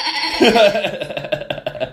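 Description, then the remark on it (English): A person imitates a sheep's bleat, a wavering, nasal "baa" that quivers in a rapid tremolo for about two seconds, loud, with no other sounds around it. “But because I was having far too much fun, I just made this whole, like, the whole way through that play, whenever the sheep was on stage, I would always find like a really inappropriate moment to like go.”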